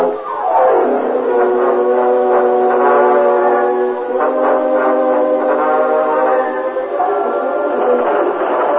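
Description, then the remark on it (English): A steam train's whistle blows loud, a long sustained chord that swoops down at the start and holds for several seconds over the rumble of the moving train. “Your train leaves tonight.”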